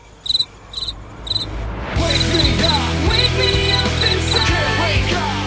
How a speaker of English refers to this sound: Everyone left. Can we insert crickets here?